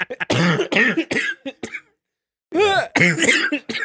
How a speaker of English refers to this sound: I feel like I've been like laughing and coughing so much I'm gonna be fucking coughing at blood by the end of this episode.